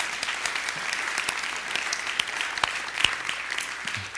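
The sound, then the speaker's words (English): A church audience claps in a steady, dense wash of overlapping hand claps. The applause is moderately loud and sustained throughout, with a few sharper individual claps standing out, and no voices. “It's okay to clap.”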